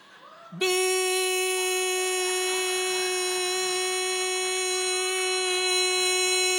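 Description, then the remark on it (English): A loud, steady electronic emergency broadcast test tone cuts in abruptly and holds unbroken for about six seconds, a harsh, buzzy alert signal with no voices. “It didn't go like beep 1 second. This is only a test.”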